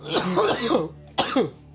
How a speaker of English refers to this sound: I'm just having a cough, okay?